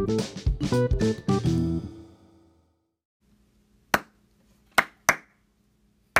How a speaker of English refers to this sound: Oh, you're trying to do a thing there. You could have just told me. I thought you were just clapping to be an asshole, so I was waiting to start the segment.